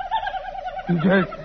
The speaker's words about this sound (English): It's a turkey. A big gobbler.